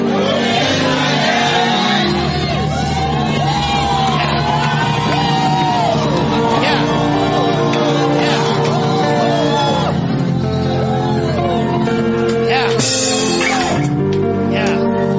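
An audience shouts and cheers loudly and continuously, many voices whooping and yelling together, a dense wall of overlapping cries with steady sustained tones underneath.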